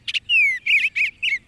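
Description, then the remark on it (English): Tree swallows calling: a short chirp, a smooth downward-sliding whistle, then three quick liquid, gurgling twitters in a rapid series, clear with no voices. “It's a wistful moment when your backyard swallows or bluebirds depart each fall, like the tree swallows we're hearing now.”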